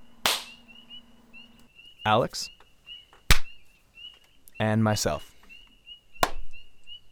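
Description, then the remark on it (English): Three sharp, loud hand claps in front of a microphone ring out about three seconds apart, each a single crisp smack, with short bursts of a man speaking between them over a faint steady whine. “go ahead and clap your hands in front of your microphone.”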